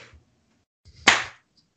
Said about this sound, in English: Okay, we're recording now. I'll clap. You guys don't. There we go.